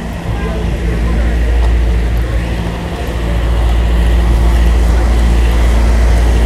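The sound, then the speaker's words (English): Loud, steady city traffic rumble on 3rd Avenue with a heavy low engine drone, like a bus idling or pulling along, continuing without a break throughout; the bus stops on every block. “I'm walking down 3rd Avenue right now. Niggas, this bus stops on every block”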